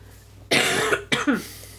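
Two close, harsh coughs in quick succession, loud and raspy, the first longer than the second, with a low steady hum in the background.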